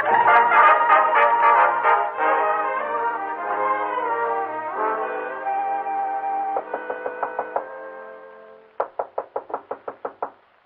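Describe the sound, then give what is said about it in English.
Rapid, loud knocking on a door in several bursts, the first long and echoing, followed by two shorter sharp rounds of about seven knocks each near the end. “let us in, please. Open the door.”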